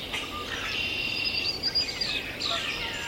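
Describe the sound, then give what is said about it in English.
A dawn chorus of many birds, including northern cardinal, blue-gray gnatcatcher, warbling vireo, red-winged blackbird, swamp sparrow, yellow warbler, common grackle, catbird, common yellowthroat and Canada goose, sings at once in a dense, continuous tangle of overlapping whistles, trills and chirps, with no talking. “We're hearing northern cardinal, blue-gray gnatcatcher, warbling vireo, red-winged blackbird, swamp sparrow, yellow warbler, common grackle, catbird, common yellowthroat, Canada goose.”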